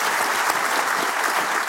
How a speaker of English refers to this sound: All right, look at these people. Yeah, round of applause for these people. You've been in it a while.